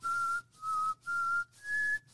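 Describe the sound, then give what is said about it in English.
A person whistles a short TV theme melody, four clear sustained notes with brief gaps, the last one stepping higher. The whistling is steady, with no talking. “Oh, he had tried and tried and tried and tried, and at one point put his DX7 on the stock whistle sound and was out of ideas.”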